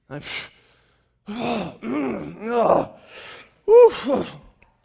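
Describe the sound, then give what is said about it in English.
A voice performs a string of exaggerated, theatrical, passive-aggressive huffing breaths and voiced sighs, several in a row, each a breathy exhale with a groaning tone, separated by short pauses. “So, but when that happens and I'm doing it, then I start doing that, you know, the passive aggressive breathing.”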